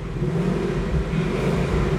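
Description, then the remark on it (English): A car engine revs steadily through its exhaust, a loud, continuous low rumble and growl lasting a couple of seconds with slight swells in intensity. “I thought you were a car guy. Yeah. Come on, rev it properly.”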